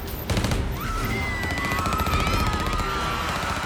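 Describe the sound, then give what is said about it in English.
A loud, sustained burst of rapid gunfire as Purvis's agents spray a car in a parking lot with bullets, shots rattling off in a dense, continuous stream for several seconds, with thin ringing, whining tones weaving above the clatter. “The music was too loud, and so the agents opened fire. They began spraying the car with bullets.”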